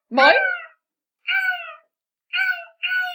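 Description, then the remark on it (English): A voice imitates seagull calls with four loud, nasal squawks. The first is long and rising, followed by three shorter, steadier cries separated by brief silences. “I got to stand there and make seagull noises for half an hour”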